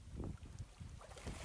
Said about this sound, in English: Listen to the waves moving in and out.